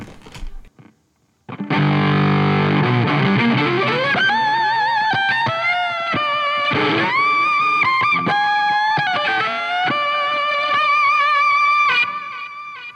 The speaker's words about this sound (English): And then my distortion sounds are all amp models. I'm not using any, like, quote, distortion pedals. This is an Orange amplifier.